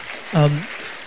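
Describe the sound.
An audience applauds in a steady, dense wash of clapping that runs the whole second, with a short voiced shout or cheer rising briefly through the middle.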